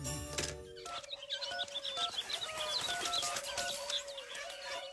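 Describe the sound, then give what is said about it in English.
A dense chorus of calling birds, just delivered, chirping with bright overlapping tweets over a low steady warble, as if many caged birds are present. Some clucking and cooing from French hens mixes in. No one speaks. “Yes, I got the calling birds. Yeah, the man just dropped them off.”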